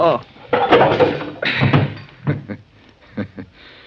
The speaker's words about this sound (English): That's a poke in the jaw I gave you that knocked you out